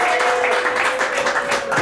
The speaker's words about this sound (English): Clap them more and for a longer period of time. So we'll get some there it is.